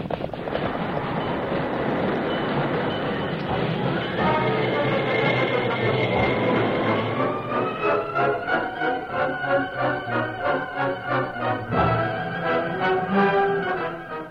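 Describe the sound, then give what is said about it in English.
A train rumbles loudly, then its rhythmic wheel clatter gradually slows while high, drawn-out squealing tones ring over it, as though braking toward a halt. “Stop the train! Stop the train, I tell you!”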